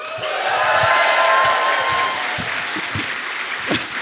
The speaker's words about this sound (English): So thank you so much for coming out. I just admit you as a crowd. Give me a round of applause if you've ever heard the show before.